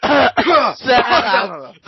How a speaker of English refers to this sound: If you start a chant, we've become one of those shows. That'd be a hell of a chant to start, like a coughing chant.